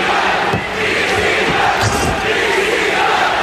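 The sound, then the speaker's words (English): A large wrestling crowd roars and chants "ECW" in unison, a dense, loud wall of voices sustained throughout with rhythmic swells, no single speaker standing out. “at some point in the show, maybe several, there is a very vocal ECW chant.”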